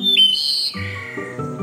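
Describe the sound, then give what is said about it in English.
Birds chirping in a quick run of high, clear whistled notes, followed by lower, steadier calls that carry on for the rest of the short moment, with no one talking. “Anya says she hears birds and nothing else.”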